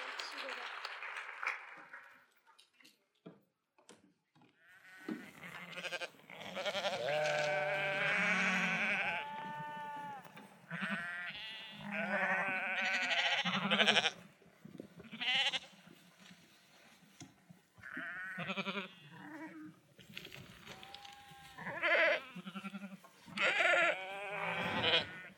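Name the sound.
sheep bleating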